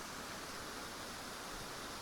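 waterfall rushing

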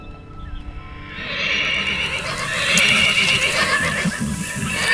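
horses neighing

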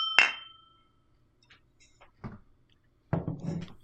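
glasses clinking

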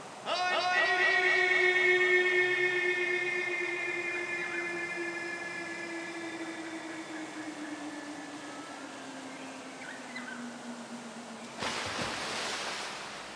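waterfall rushing water

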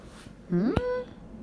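stomach growling

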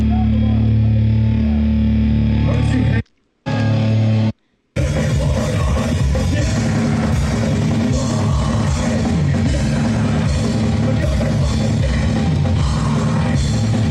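crowd shouting and cheering

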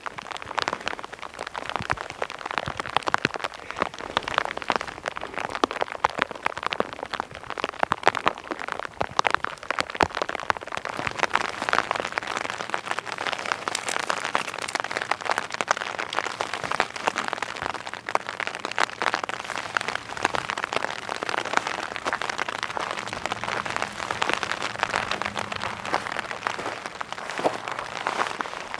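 rain falling

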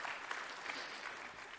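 audience clapping in praise

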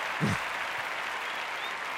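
crowd applause

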